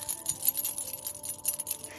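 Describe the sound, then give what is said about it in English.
A small new bracelet clinks and jingles with light, bright metallic taps in a quick, irregular patter for about two seconds. It is fairly soft, and no one speaks. “Makes a really neat little clink sounds,”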